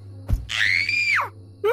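A thump, then a single long, shrill, high-pitched scream of terror from a child, held for almost a second before breaking downward, with another cry starting just after. Loud.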